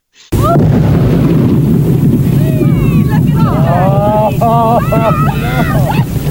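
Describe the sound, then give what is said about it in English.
A sudden, heavy explosion boom as a whale carcass is blown up cuts in from silence and rolls into a sustained, roaring rumble, while a crowd shouts and cheers excitedly over it and chunks of whale carcass fall around the camera. “You're going to hear the boom. You're going to hear a happy crowd to an extent.”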